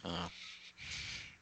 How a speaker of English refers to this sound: Yeah, except she was very buffy earlier. Now she's quieted down. What's buffy? She was barking.